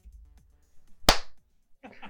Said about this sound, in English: Who just clapped? I did. Just to mess everything up.